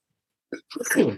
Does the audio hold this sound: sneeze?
yes